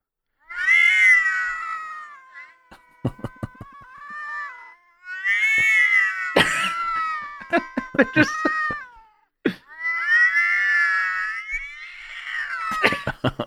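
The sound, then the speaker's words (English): Two cats yowling at each other, trading long, wavering loud cries back and forth, with sharp clicks and thumps between the drawn-out cries. “If cats just, you were saying they were just bitching at each other.”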